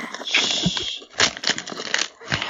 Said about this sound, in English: Look at this wrapping. I'm getting some very crinkly. Good wrapping. Oh, it's like good crinkly.